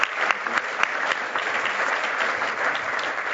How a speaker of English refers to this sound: what an incredible panel. Can we get another round of applause for everybody on the stage?